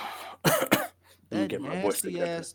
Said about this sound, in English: That nasty-ass throat clear, man. Bro, you have all the time to clear your throat. You got the Rona, son? Clear your throat to introduce yourself.